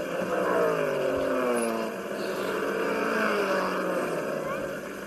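A race car engine drops and climbs in pitch as it downshifts through an S-turn onto the road portion of a race track and revs again through left and right turns, a loud, continuous whine from start to finish.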